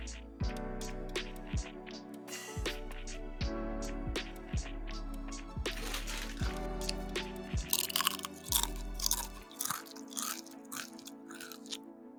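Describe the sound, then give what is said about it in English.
Loud crunching and chewing of crisp food, with repeated sharp bites and wet mastication in a steady rhythm, with no talking. “Can you chew louder?”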